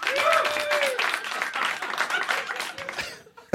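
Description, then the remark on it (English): An audience claps steadily for a few seconds, a dense wash of many hands with a few raised voices and whoops mixed in, before the applause tapers off and stops. “Applaud if you know what Diablo 4 is.”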